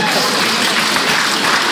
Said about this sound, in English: That's the time we clap.